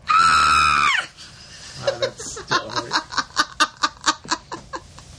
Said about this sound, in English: No, because last time I screamed, you got mad. Go ahead and scream.